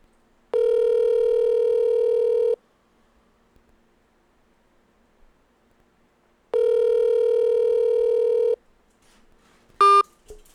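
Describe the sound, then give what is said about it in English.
A phone line's hang-up tones: two steady, buzzy electronic tones about two seconds each, separated by a long silent pause, then a quick sharp beep at the end. No voices. “That was a hang up.”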